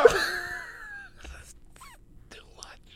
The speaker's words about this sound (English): Scientists were able to mimic Nessie Amun's voice by recreating his mouth and vocal cords with a 3D printer. It allowed them to produce a single sound.